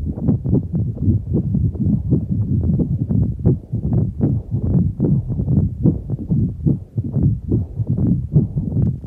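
Steady human heartbeats recorded at EMI Studios, London, in Studio 2, thump low and muffled and continuous, their repeated pulses running without a break and nothing else heard.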